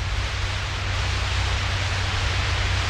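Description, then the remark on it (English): Steady, unbroken radio static hisses throughout, a dense wash of noise with a low droning hum beneath it and no voices: cosmic static picked up by devices built to catch and listen to signals from space. “Most of the sound is cosmic static. But here, dimly heard and subtle, is a sound that might have a pattern to it.”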